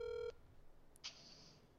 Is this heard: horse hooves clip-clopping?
no